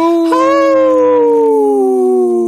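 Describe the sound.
A loud, sustained howl, a human voice imitating a wolf, holding a long wavering tone that slowly slides downward in pitch over a couple of seconds.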